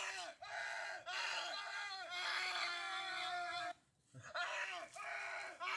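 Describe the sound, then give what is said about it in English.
Two people screaming at each other: loud, shrill screaming from two overlapping voices, held almost continuously with a few quick breaths and one short pause before it resumes; at the end they jump while screaming. “And at the end, we just started jumping while screaming.”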